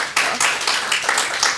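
A brief round of applause: steady, evenly spaced hand claps with a bright, crisp snap, fairly loud throughout, with no voices over it.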